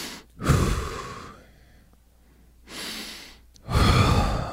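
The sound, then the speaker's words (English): Slow, deliberate patterned breathing: a long, audible breath, a pause, then two more heavy breaths in quick succession, steady and controlled with no talking. “I'm in the middle. That would fuck up my whole breathing pattern.”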